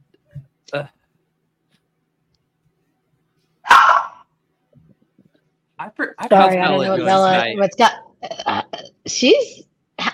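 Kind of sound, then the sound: animal, dog barking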